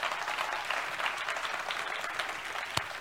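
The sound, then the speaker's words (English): An audience breaks into sustained applause, a dense, steady wash of many hands clapping at once, with one sharper clap standing out near the end and no voices rising above it. “Put a clap to it if you believe it.”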